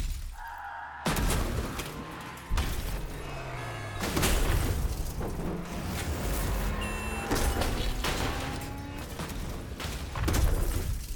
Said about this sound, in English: Put in a bunch of car crash, but build it all from separate sounds.